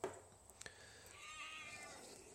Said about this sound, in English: Sorry, my cat's being a butthole.